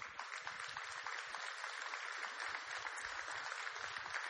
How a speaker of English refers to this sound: Now, I'm not leaving SECO, so if some of you are applauding for that, you know, you're going to have to come up with another strategy.